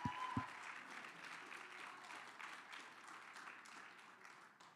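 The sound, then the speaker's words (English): A church audience claps their hands in sustained, dense applause, a steady wash of many overlapping claps that holds at an even level and eases slightly toward the end. “Clap your hands if you believe that today, church family.”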